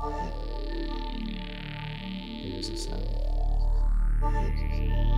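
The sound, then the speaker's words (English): Sonified gravitational waves from a black hole: a layered electronic drone of steady tones with slowly sweeping, warbling glides and a few brief high chirps, swelling slightly louder toward the end. “Gravitational waves sounding from a black hole.”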